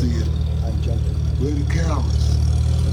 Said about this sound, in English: The forklift raised its arm, brought it down, and picked up the car.